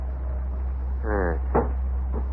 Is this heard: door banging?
yes